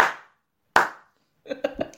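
Two loud, sharp hand claps, each with a ringing decay and spaced under a second apart, followed by a brief burst of voiced sound as someone starts to speak.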